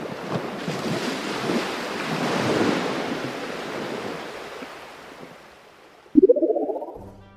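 Ocean waves surge and wash onto the shore in one long, rushing swell that builds, peaks, then slowly recedes. Near the end, an abrupt rising tonal sound cuts in.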